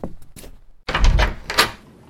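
A door is opened to see who is there: faint clicks from the latch, then a fuller rattling thud and creak of the door swinging, with no one speaking.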